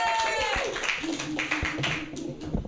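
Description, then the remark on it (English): An audience at the third annual Spark Presents Mutiny Radio Comedy Festival claps steadily for a few seconds, a dense, fairly loud patter of many hands mixed with cheering and chatter from the crowd. “That is an appropriate amount of clapping.”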